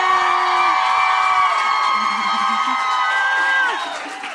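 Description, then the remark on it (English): A live show audience screams and cheers loudly for about four seconds while a video is being recorded, many high-pitched voices overlapping in sustained shrieks and whoops before the noise starts to fade at the end. “We got to get a video. Scream!”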